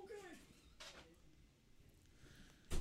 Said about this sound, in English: You want me to close this? Sure. Actually, leave that one open, but close the laundry door. Yes, sir.